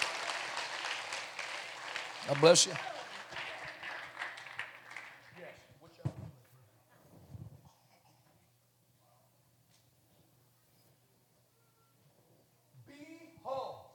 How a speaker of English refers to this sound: Give your new brothers and sisters in Christ a great hand clap as they go back to their seat.